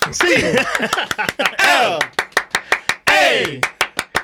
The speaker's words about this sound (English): Hold on. Can I clap? No, good luck. Yeah. Absolutely. That deserves a clap.